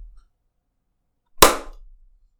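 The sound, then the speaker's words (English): A single sharp hand clap rings out after a stretch of silence, a loud, crisp burst that decays quickly with a brief tail. No one speaks. “Clap.”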